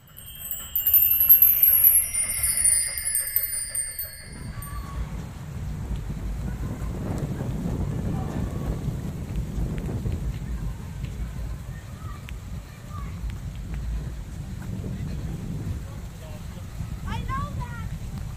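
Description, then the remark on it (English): Stormy evening weather heard from inside an elevator: a steady, deep rumble of thunder and rain at moderate loudness, following a brief opening of high whistling tones, with faint muffled voices underneath. “Now sit back, relax, close your eyes, and come with me as we ride in an elevator on a dark and stormy evening.”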